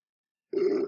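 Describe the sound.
After a moment of silence, a voice imitates a sheep eating grass with a single low, throaty, buzzing grunt, steady and fairly loud, with no words spoken.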